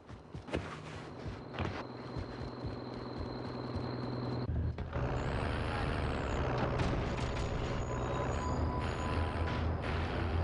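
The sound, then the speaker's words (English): A heavy truck engine in a video game rumbles loudly and steadily, with a sharp hiss of air brakes and mechanical clanks partway through, with no one speaking. “Crap, I'm gonna get this truck actually.”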